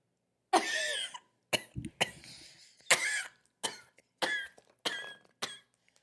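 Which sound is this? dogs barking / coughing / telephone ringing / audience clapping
coughing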